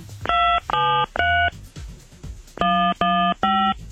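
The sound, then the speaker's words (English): Six loud telephone keypad tones are pressed in two quick groups of three, with a short pause between the groups, as a 5-digit zip code followed by the pound sign is entered into an automated phone system. Each beep is brief and steady-pitched, with no talking. “Please enter the 5-digit zip code associated with this account, followed by the pound sign.”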